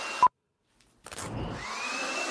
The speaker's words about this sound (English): It's a tearaway shirt, and they're blowing a leaf blower at her.